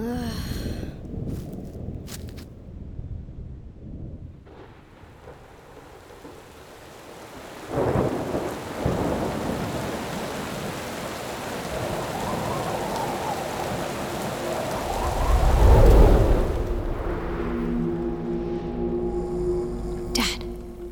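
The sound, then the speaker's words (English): A thunderstorm with steady rain hissing throughout, punctuated by deep rolling thunder that swells loudly near the middle and again toward the end. “Looks like the storm's coming.”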